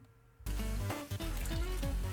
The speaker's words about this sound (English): Oh, he's just going to pour soda all over his keyboard.